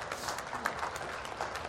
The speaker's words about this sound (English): Can you clap longer?